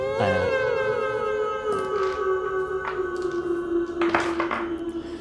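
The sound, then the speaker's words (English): A wolf lets out one long, sustained howl, its tone held steady and slowly sliding lower over several seconds, with a few brief noisy bursts underneath and no talking. “And it lifts up its head and howls.”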